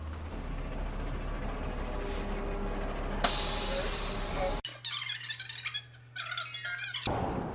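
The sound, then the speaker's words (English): A large city bus arrives at a bus stop, its engine droning low before a loud burst of air-brake hiss sprays out, followed by squeaks and mechanical clatter as it settles at the stop. “And here comes the bus.”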